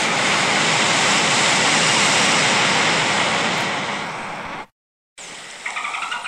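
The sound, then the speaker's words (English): At the end of a song, a loud, steady rush like surf fills the first few seconds, then cuts to a brief silence before a short burst of high, squeaky dolphin chirps and clicks. “And so, end of the song, and I'm sure there's going to be some dolphin sound.”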